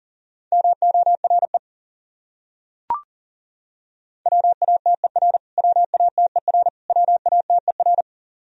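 Fast Morse code at about 40 words per minute, sending repeated words from a list of the top 100 words: a steady mid-pitched tone keyed in rapid dots and dashes, grouped into several words with short gaps between them and one brief click partway through.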